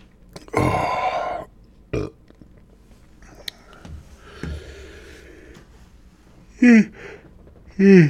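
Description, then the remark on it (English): A loud, throaty yawn bursts out near the start, followed by a short gulping sound and, later, two brief groaning vocal sounds with a wavering pitch. “Oh, you guys don't want to hear me yawning.”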